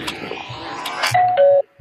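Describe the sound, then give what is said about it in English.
A doorbell chimes a two-note ding-dong, a higher tone stepping down to a lower one, following a stretch of muffled rustling and clatter, then a short soft thump at the end. “Someone get the door.”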